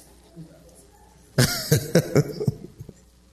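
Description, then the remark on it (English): After a quiet moment, an audience member breaks into a run of harsh, rapid coughs, five or six hacking bursts in quick succession, fairly loud, with a hint of throat clearing at the end. “Some of y'all already got choke. Go on and cough and say amen.”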